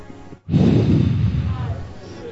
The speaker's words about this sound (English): I'm just breathing out, please. I'm not trying to blow the wind on anybody.